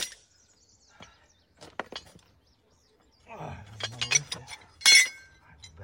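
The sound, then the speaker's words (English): A 2-pound or 4-pound hammer strikes steel wedges set in rock to split it, giving a handful of sharp, ringing metallic clinks at irregular intervals, with the loudest blow near the end and faint voices in between. “Now, I use a 2-pound and 4-pound hammer only because you got to do it all day.”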